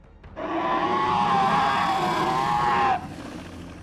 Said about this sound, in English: As that is not a shriek of a dragon, that is a shriek of a magical alarm going off.